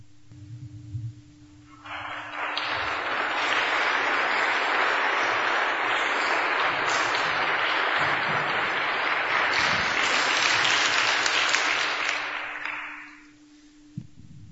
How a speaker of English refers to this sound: And I was wondering, should we clap or not? And I'm glad we did.